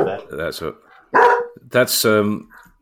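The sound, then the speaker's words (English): A dog barks at someone who has come to the door, several loud bursts with short pauses between them and no other sound competing. “That's dog speak for FIFA are talking bollocks.”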